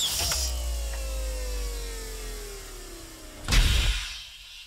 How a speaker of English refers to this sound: When they hovered just above the surface, the exit doors opened and a ramp lowered in front of the cadets.